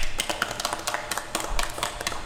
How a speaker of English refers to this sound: Everybody, give Mitchell a round of applause.